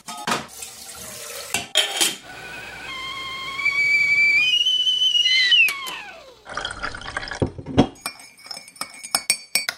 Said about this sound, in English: We should have a tea break first. I think so as well. Okay, let's put the kettle on.